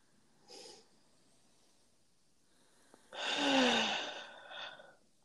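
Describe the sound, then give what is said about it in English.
Airy deep breathing in and out with no talking: a short soft breath, a long pause, then a long, loud, rushing breath followed by a brief shorter exhale. “Take a few deep breaths, and maybe you can feel a little more space.”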